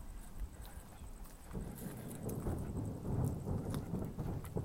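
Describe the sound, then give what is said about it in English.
Rhythmic banging like a drum, a steady run of low, muffled thuds that grows a little louder partway through and keeps going, with no voices. “I sound like somebody's banging a drum or something.”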